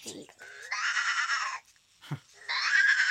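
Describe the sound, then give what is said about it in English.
A toy robot plays a recorded sheep bleat twice, each a loud, wavering electronic baa, with brief voice-like sounds before each one. “Sheep. He's a sheep.”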